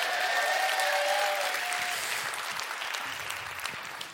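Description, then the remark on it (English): A church audience applauds together, a dense, steady wash of many hands clapping at an even loudness, with a brief whistle-like tone sounding over the start before fading. “Are we going to clap? We'll do it together, people.”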